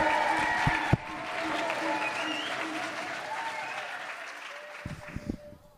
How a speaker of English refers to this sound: And so the first thing you can whoop, holler, clap, cheer about is the amazing Simon Thomas, who's going to come and start speaking to us. So give him a huge round of applause. Woo-hoo!